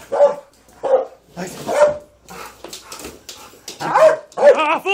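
A dog barks repeatedly in loud, irregular bursts, a few quick barks followed by higher, whining yips toward the end, with no clear talking over it.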